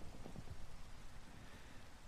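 Steady rain with thunder hisses softly and evenly throughout, a dense wash of drops with a low rumbling undertone and no voices.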